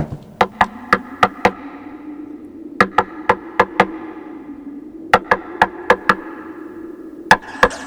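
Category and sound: impact, knocking on a door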